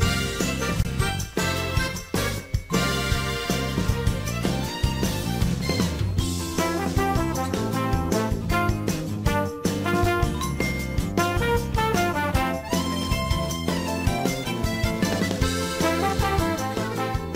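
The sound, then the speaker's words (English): An upbeat disco track from a video game's second DLC, not in the base game, plays on its own, with a steady four-on-the-floor beat, bright chiming synth melodies and a busy bassline, loud and continuous throughout. “I'm going to pick you a track that's so new, it wasn't even in the base game.”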